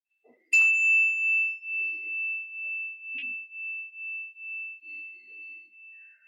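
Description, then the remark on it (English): A single meditation bell is struck once to begin a meditation, ringing out with a clear, steady tone that lingers and slowly fades over several seconds, with no voices present. “We will begin and end the meditation with a bell.”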